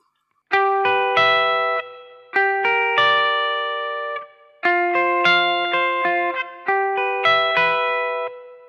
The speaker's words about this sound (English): So here is the clean guitar sound. Nothing fancy, a clean sounding rectifier amp. And a little bit of natural reverb.